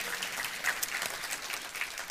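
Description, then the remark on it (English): A church audience claps their hands for the Lord in a dense, continuous burst of applause, many overlapping claps at a moderate, steady level with no talking. “You can clap your hands for the Lord.”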